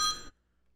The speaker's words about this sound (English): Oh, shit. Bang my line. Who is it? We got a phone call. Let me hear. Who is it?